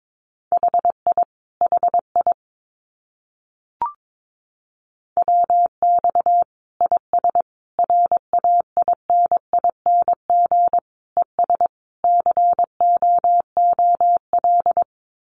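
Morse code CW of common amateur radio QSO phrases sent at a brisk 22 words per minute: a single steady mid-pitched tone keyed on and off in quick dots and dashes, with a brief click and pause early on.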